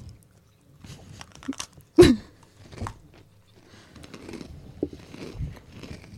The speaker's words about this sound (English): You're going to hear us chewing.